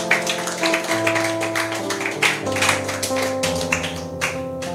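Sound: audience clapping hands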